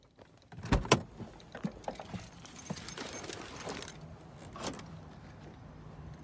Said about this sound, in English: Just want to let you know this is one of my favorite parts of the day, getting into work and opening the doors. Let's go check it out.